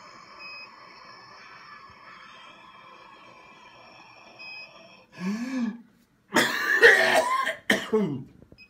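hard coughing

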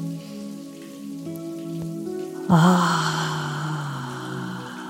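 shower water running

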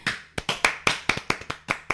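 hands clapping

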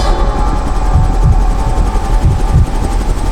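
helicopter rotor noise

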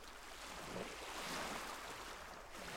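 ocean waves

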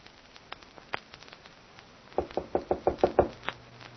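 knocking on a door

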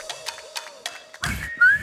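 person whistling a tune

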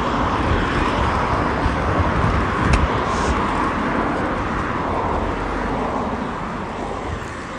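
bus arriving

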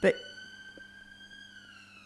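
fire alarm ringing

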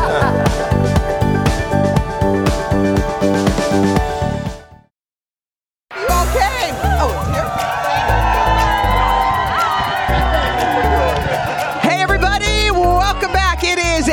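studio crowd cheering

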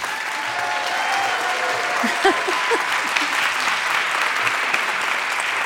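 audience applause

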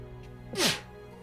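sneeze

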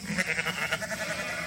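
sheep bleating

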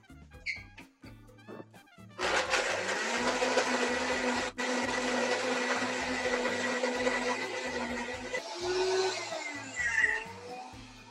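blender blending a drink

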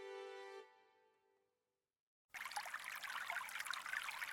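water trickling

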